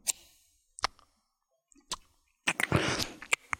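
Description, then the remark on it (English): Scissors snapping shut several times at irregular intervals as ASMR, each a crisp, bright click, with a brief rustling burst between the last few snaps. “The scissors, they snap.”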